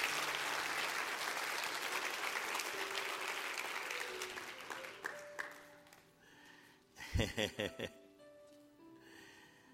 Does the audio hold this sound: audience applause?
yes